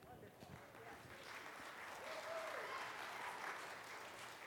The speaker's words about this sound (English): For on this second Sunday in Lent, we are having our annual congregational meeting and a brunch. I heard an amen, I think, and clapping.